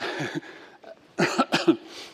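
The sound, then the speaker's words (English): Several sharp coughs from a pastor burst out in quick succession near the end, following a stretch of murmured voice at the start. “I always cough when I lie.”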